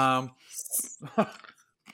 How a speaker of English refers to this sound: I'm sorry for chewing ice in the microphone, everybody.